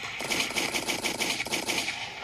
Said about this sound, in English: Air horns. Give some motherfucking air horns. And some motherfucking gunshots